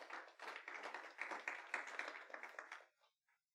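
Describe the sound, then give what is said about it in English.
A church audience claps together in a dense, steady burst of applause lasting about three seconds, then it quickly fades with a few last scattered claps. No one speaks over it. “If one class, we all clap.”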